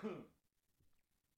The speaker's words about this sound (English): I have a cough. It might be Corona. I'm letting you know. Just kidding. I've been smoking way too much.